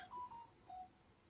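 A phone chimes out a quick run of three short electronic tones, faint, with no voices and only a soft background hiss.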